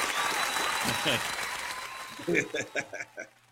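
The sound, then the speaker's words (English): Audience applause welcoming screenwriter David Koepp on the Chief Chat show fills the first two seconds as a dense, steady clatter of clapping, then fades while a voice begins speaking over the tail of it. “I got to get that extra applause to follow me wherever I go.”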